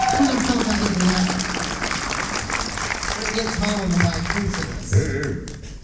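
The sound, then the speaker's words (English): Steady audience applause for two people lasts several seconds, a dense crackle of many hands clapping at once, with voices and a few cheers mixed underneath. “And all right, give those two a round of applause.”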